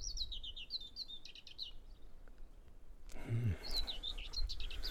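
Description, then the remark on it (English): A bird in a tree sings a quick run of high, warbling chirps, pauses, then starts again, clear over a low outdoor rumble and a brief muffled thump, as someone walks beneath the tree. “Just walking under a tree with a beautiful bird on it.”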